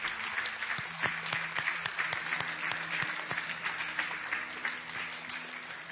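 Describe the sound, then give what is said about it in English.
A crowd of people applauds steadily for several seconds, a dense wash of overlapping claps with a few sharper individual claps standing out, loud and continuous without pause. “Okay, well, that applause was for you.”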